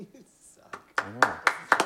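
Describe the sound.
Several sharp hand claps during a game of Wheel of Fortune land in a steady, quick rhythm, about four per second, fairly loud, with a voice murmuring faintly underneath.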